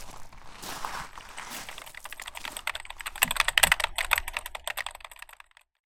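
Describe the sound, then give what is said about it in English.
Rapid, steady typing on a computer keyboard, with dense clicking keystrokes that grow a bit louder midway before stopping abruptly near the end. No voices. “Either with voice memos, a keyboard, or a pen, I start to riff some thoughts, and then I have an idea.”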